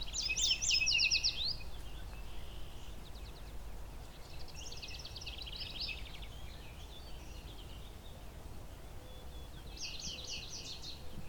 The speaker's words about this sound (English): Yellow warblers. So here's a yellow warbler.